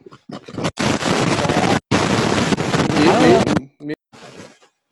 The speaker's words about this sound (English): it sounded like somebody's vacuuming somewhere